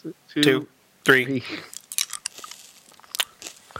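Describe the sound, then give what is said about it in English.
Chewing with moist clicks and small crunches, steady and irregular after two brief vocal sounds, as someone chews a hard lemon-flavored candy on both sides of the mouth. “Oh, I went to both sides of my mouth. I'm only supposed to chew on one side.”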